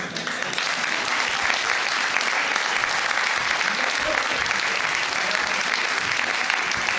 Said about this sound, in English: Round of applause.